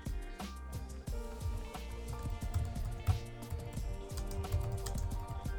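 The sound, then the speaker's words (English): Rapid, uneven clicking of keys on a computer keyboard as someone types a playlist name, steady for several seconds, with a low background hum and no talking. “Keep messing up. I think it's just because your keyboard is different than mine.”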